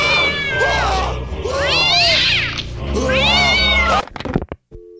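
A cat yowls loudly in several long, wavering meows that rise and fall in pitch, followed by a few sharp clicks and knocks as it ends.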